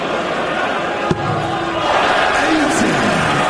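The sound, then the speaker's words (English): A large crowd at the World Darts Championship roars and cheers continuously as a player, one dart from the second round, needs a bullseye, a dense wash of voices that swells louder after a sharp thud partway through, with shouts rising above the noise. “Listen to the crowd.”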